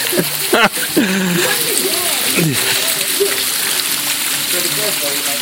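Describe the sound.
Steady splashing and rushing water from a custom-built water feature about 10 feet high fills the whole stretch, a continuous wet hiss with small surges, while a person touching the water talks intermittently over it.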